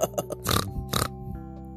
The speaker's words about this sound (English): "Not I," snorted the pig. "I need to roll in the mud."